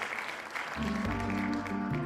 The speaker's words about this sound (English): Round of applause. Insert a round of applause at this point. I mean, we'll add over the top of it.